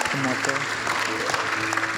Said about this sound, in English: Let's give a clap for all those people that made that decision.